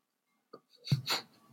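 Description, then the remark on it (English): A single sneeze: a brief intake of breath, then an abrupt explosive burst followed by a hissing, breathy rush that quickly fades. Fairly soft overall, with no talking. “Bless you. I'll edit it out.”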